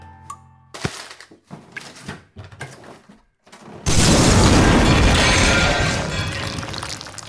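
Scattered metallic clicks and rattles for a few seconds, then a hand grenade explodes in a sudden loud blast that roars and crackles on, easing slightly toward the end. No one speaks.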